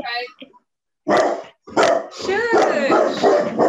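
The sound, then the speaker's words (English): A dog barks loudly at someone at the door in several quick bursts, the later barks running together into a sustained volley, with a person's voice mixed in. “I like the last bark there when you said, "Have you stopped?"”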